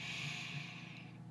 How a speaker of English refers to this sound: Just take a deep breath in.